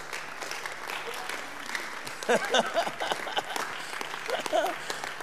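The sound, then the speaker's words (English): An audience claps steadily throughout, a dense wash of many hands, with shouting voices rising over the applause about halfway through and again near the end. “Those who are clapping, they are coming to the house.”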